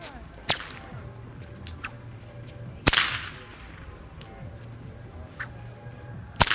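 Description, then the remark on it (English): Three sharp, loud cracks of a huge blue whip over a dozen feet long ring out several seconds apart in an outdoor plaza, each followed by a quick slapback echo off a church and a movie theater and a long, quiet reverberant tail fading over a low ambient hum. “You could hear a sort of short slapback echo off the church and the movie theater, and this long, quiet tale of reverberation.”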